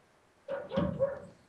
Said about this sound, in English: Whose pup was that? That was mine. I apologize.